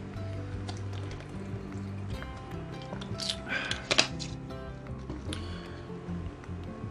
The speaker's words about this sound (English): Here, give me a second. I need to get a sip of water.